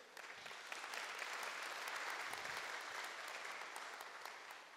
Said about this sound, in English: obligatory claps. I love them.